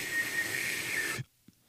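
A thin, steady whistling tone from a person's nose while eating rides on a rush of breathy air for about a second, fairly loud, then cuts off abruptly into near silence.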